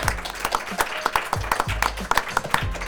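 An audience applauds steadily for a few seconds, a dense patter of many hands clapping at moderate loudness, with no voices over it.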